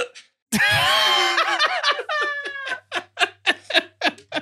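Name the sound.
hiccup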